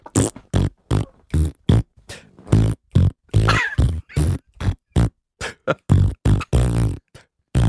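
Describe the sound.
A voice imitates farts with a quick run of about twenty short, buzzy, pitched blurts, rising and falling in a bouncy jazz-melody rhythm, loud and unaccompanied.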